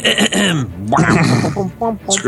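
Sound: throat clearing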